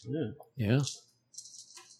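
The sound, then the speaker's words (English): A voice makes a couple of short sounds, then nine dice rattle and clatter briefly for under a second, fairly quiet, rolled for a perception check in a game. “I need you to roll me perception, which is willpower plus logic. Okay, so willpower is 5 and logic 4. So 9 dice total.”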